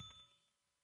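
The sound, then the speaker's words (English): A small bell is struck once, a quick bright ding whose ringing tone fades away over the next second. It's fairly quiet, with no voices alongside it. “My bell. Where's my bell?”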